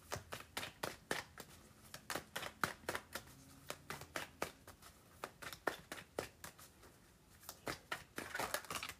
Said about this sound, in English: So we're going to take a wild unknown alchemy card and I'm just shuffling some Morgan Greer and see if we can't get two more cards for Morgan Greer, please.